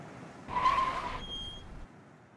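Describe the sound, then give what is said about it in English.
A car's brakes squeal sharply as it skids to a stop in front of a small fieldstone house, a bright high-pitched screech lasting about a second over a rushing road noise that fades out after. “But I awoke with a start at the sound of brakes.”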